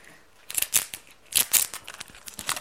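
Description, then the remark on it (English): Scissors snip through a strip of paper that has been stuck together into a loop, cutting along its middle line, in a series of crisp cuts, several sharp bursts with short pauses between them, then lighter trailing snips. No one speaks. “Oops, good job I've got scissors.”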